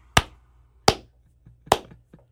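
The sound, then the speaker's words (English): A slow clap: three sharp, loud hand claps spaced evenly almost a second apart, with a couple of faint softer taps in between and no voices. “Well, I'm going to give Louis a slow clap.”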